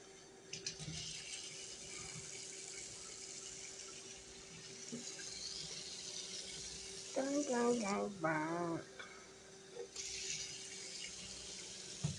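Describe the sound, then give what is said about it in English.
A tap runs steadily, water hissing as it pours into a container, with a short burst of someone talking partway through and a faint low hum underneath. “Damn it, somebody's drinking up all the fucking water. I just filled this up.”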